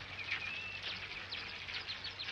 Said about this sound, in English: You've got, like, the birds tweeting. And yeah, the birds are tweeting.